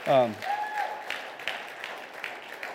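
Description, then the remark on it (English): A short voice is followed by scattered, light applause for a church band, a few soft claps at uneven intervals, faint and sparse rather than a full ovation. “You should clap for the band because that's a big deal.”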